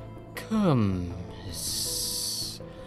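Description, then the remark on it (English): A steady, sharp hiss of a slender asp coiled on a throne's seat back, lasting about a second, preceded by a brief burst and a low tone that slides downward in pitch; no one speaks. “An ostrich and a donkey seized the moment and fought for the chair, but they were bit by a slender asp who had slithered upon the seat and coiled unseen about the throne's seat back.”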